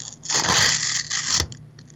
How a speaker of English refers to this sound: Hopefully you heard that. Even the quiet sound of, like, the paper tearing.